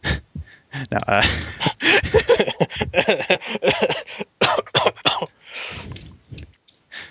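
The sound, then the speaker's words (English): A man starts coughing after laughing, a run of harsh, choppy bursts with breathy vocal noises between the fits and a few short pauses. “First time he's laughed in a while, and then he starts coughing.”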